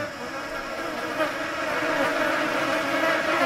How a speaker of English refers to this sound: They're flies, I guess, but I don't like them.